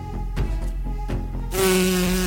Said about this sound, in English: Again, I just got a wasp. It's like a bee. It was in fact a fly. Oh, it was a fly.